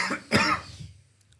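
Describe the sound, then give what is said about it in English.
Two quick, harsh coughs, the second one louder and fuller, followed by a brief quiet trail with no talking. “Yeah, that would make me cough too.”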